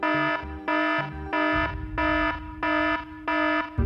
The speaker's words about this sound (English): It was the EIC-8S, the Engine Indicating and Crew Alerting System. It indicated the nightmare scenario. Both engines were out.